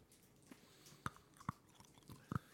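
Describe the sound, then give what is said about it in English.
Crisp crunching as someone chews a hard, chalky compressed candy, with several sharp bites spaced about half a second apart and softer grinding between them. Nobody speaks. “It sounds like I'm chewing on a tooth.”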